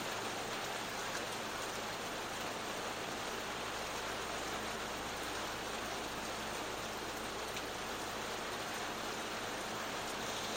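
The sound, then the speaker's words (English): Steady light rain sprinkles on a surface as it slows down, a soft continuous hiss of fine drops with no voices, even throughout. “The rain is sprinkling now, I guess, is what you'd say.”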